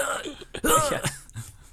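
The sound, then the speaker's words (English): A man's voice lets out a theatrical, exaggerated hacking cough, a couple of harsh, throaty bursts, performed deliberately as an imitation of a violent coughing fit, as if coughing up a lung. “Jared Harris, could you do me a favor and cough up a lung? Yes. Here I go.”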